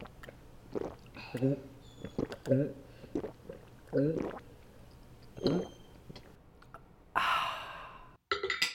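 Someone drinks water in a series of audible gulps and swallows with small throaty sounds, then lets out a loud, breathy sigh of relief at the end.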